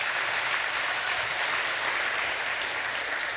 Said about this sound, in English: You clap now, but when I tell you what I'm gonna tell you, you're gonna wanna clap again in a minute,